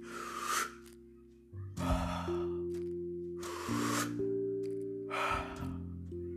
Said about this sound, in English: Sometimes we even forget the most important aspect of our life, that we are breathing. Breathe.